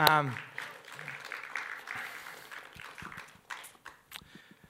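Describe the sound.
An audience breaks into steady applause as a woman is invited up to speak, a dense crackle of many hands clapping that thins out toward the end into scattered individual claps. A voice is briefly heard at the very start.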